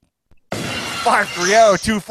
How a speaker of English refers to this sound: Sound of glass breaking.